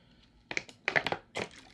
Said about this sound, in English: Let me get another swig of water.